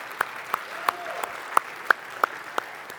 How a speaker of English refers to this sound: And we have met a great need at Avery Trace. Can we give the Lord a hand clap for that?